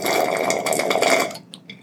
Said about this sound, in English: Sips my drink. That was perfect timing.